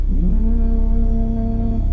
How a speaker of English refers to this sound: A foghorn can be heard moaning in the distant background as the city is being shrouded with a blanket of moisture.